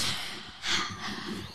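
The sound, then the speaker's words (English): A voice imitates breathing in cold air: a steady, breathy hiss of air drawn in and pushed out, swelling into a louder, sharper exhale midway, with no words spoken. “I like breathing in the cold. Yeah, I'll do some sound effects for y'all.”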